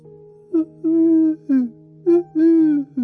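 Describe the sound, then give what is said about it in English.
A voice imitates pigeon cooing: two repeated phrases of low, throaty hoots, each a short coo, a longer drawn-out coo and another short one, over a steady low hum. “the only real nature sound that I find a little bit annoying, and I feel a little bit bad because one of my best friends makes this sound, is the sound of the pigeons.”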